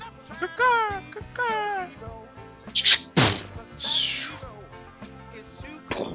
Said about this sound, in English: That was a bird who got shot, yeah. And when he landed, it turned out he was full of dynamite. Dynamite Eagle.